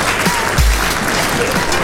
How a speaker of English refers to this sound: Yes. Round of applause. We are back.